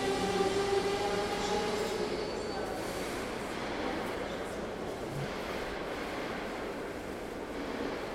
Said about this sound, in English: The 6:45 train from Krakow will now depart from platform 3. Please stay behind the yellow line. Train departing. Stay behind the yellow line.